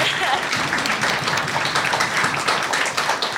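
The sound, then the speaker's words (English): A live audience at an evening show applauds steadily, a dense, continuous wash of many hands clapping at a fairly loud, even level, with crowd voices mixed into the noise throughout; the applause is for the audience members themselves for showing up. “So first of all, a big round of applause to every single one of you just for showing up tonight.”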